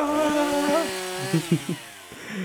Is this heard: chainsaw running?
yes